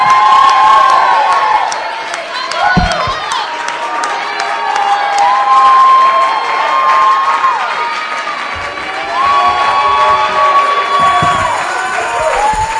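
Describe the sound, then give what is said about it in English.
A large crowd shouts and screams continuously, with high whoops and cries rising over a dense wall of voices that stays loud and energetic throughout. “Somebody shout.”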